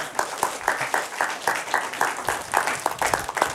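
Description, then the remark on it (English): A crowd applauds steadily, with many hands clapping in a dense burst that stays at an even loudness for a few seconds. “Should we give them a clap?”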